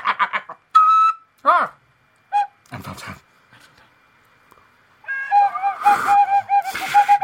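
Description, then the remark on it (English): A few short sung or spoken phrases, then a fairly loud whistled melody with wavering pitch, whistled along to a tune, that carries along over another voice for the last couple of seconds. “I'm trying to whistle with you.”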